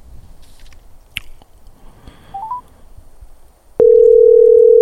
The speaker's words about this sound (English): I don't know what's going on the phones. It was pinging like a phone thing.